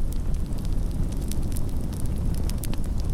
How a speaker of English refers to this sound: We didn't even hear the wind rustling through the trees, just the gentle crackling of the fire.